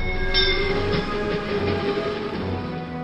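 A train rumbles steadily past on the tracks, its sustained tonal hum and rhythmic low thumps of wheels filling the scene, fairly loud throughout with no voices.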